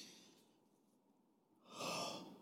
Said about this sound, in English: It's me just breathing.